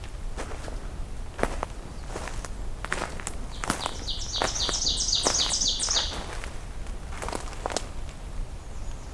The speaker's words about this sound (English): Wow, you're a loud one. It's a really close oven bird.